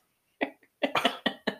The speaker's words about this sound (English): Okay. Are you going to cough every time we get back together?